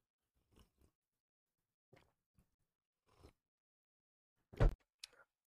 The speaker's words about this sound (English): need another sip of coffee after that, folks.